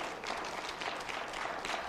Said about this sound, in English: Come on, clap your hands and thank the Lord.